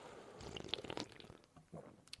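Someone sips beer: a few faint, wet slurping and swallowing sounds with small clicks, spread over about two seconds, with no talking.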